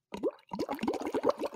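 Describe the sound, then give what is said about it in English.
A voice imitates a bubbling hot tub with a quick run of wet, popping mouth plops, rising and falling in pitch after a brief opening burst and short pause. “It's like missing the bubbly noise of a hot tub.”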